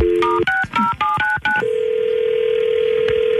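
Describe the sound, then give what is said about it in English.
A quick burst of about half a dozen touch-tone keypad beeps, then, after a phone call is hung up, a steady, unbroken telephone tone that hums on alone until the end, with no voices. “Why do you hang up on me?”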